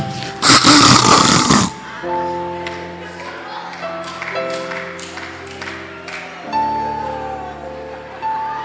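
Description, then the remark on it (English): A loud, rough snort bursts out first, followed by long, droning, buzzy snores that rumble steadily in a continuous drone with slight shifts in pitch. “It's like your body is forcing to breathe. So then you snore.”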